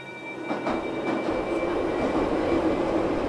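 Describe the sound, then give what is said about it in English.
A metro train rumbles steadily along the rails, a dense continuous roar with faint clacks of wheels and a thin high whine running through it, fairly loud. “I remember once I was riding the metro.”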